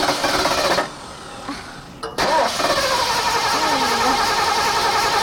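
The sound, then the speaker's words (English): An old car engine cranks and sputters, cuts out for about a second, then grinds on again with a rough, uneven churn that never settles into a steady idle, as the driver tries and fails to start the car. “I don't think I can get it started.”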